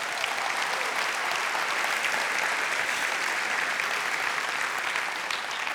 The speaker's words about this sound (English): Why don't y'all applaud for that?